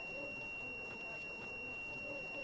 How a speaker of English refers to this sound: We're using zinc and copper electrodes. The negative is the zinc, so we connect that to the negative part of the buzzer. And then the copper is going to be our positive. And now I'm going to connect it to the buzzer.